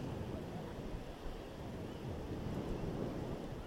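A steady, low rumble of ocean surf rolling onto a beach, with a broad wash of noise that swells slightly but never breaks into distinct crashes, continuous throughout.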